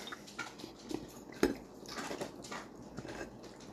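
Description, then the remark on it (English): Irregular crunching and crackling bursts, like someone chewing crisp food, with one sharper snap in the middle and faint clinks of dishes around it; no talking. “What are you eating? Why is it crunchy?”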